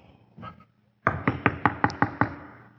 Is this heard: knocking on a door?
yes